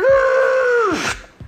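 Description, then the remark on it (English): A voice imitates screeching tires with a loud, sustained, strained tone that holds steady for about a second, then bends downward and breaks off, followed by a brief breathy trailing sound. “He screeches and then he has to turn to the left.”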